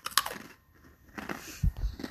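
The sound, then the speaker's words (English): Crunching on a pretzel: a sharp bite snaps at the start, followed by a few moist, crackly chews and low thumps, with no talking. “Pretzel break.”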